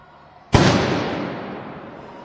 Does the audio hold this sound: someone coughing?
no